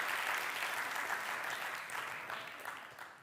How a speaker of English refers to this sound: Wasn't looking for a hand clap, but thank you. I like it.